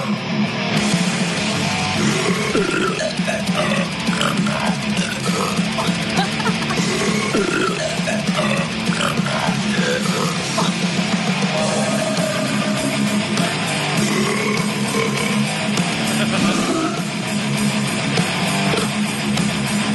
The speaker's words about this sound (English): Since the name of the stuff is called Liquid Death, they used a little death metal, and they used a lot of people burping.